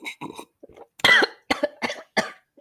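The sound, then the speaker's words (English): A fit of harsh, sputtering coughs after choking on coffee that came out of the nose, several sharp bursts in quick succession with brief gaps, loud and raspy, with no speech. “I don't even know what happened when I tried to drink my coffee. It literally came out of my nose.”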